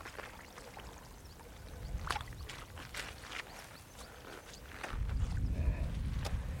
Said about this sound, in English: That's the sound of my wet boots.